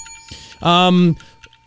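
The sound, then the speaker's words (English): A single loud bell ring, a bright sustained tone lasting about half a second before cutting off, with faint background noise around it. “What is this? What is that? Bell.”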